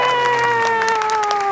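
An audience applauds and cheers as a guest author is welcomed onto a show, dense overlapping clapping running steadily throughout, with sustained whoops and voices riding on top at a fairly loud level.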